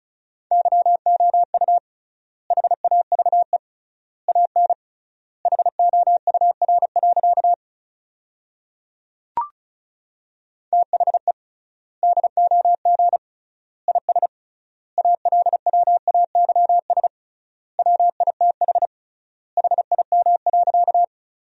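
Rapid Morse code at 35 words per minute, sent as a steady mid-pitched tone, quick dots and dashes forming sentences built from the 400 most common words, with triple word spacing leaving wide gaps between words, plus one sharp click midway, with no voices.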